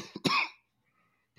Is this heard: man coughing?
yes